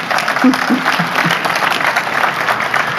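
audience applause

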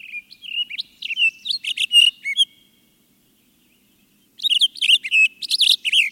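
birds chirping

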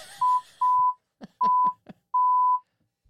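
censor beep

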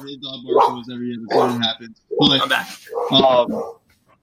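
dog barking

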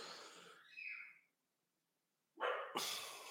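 dogs barking

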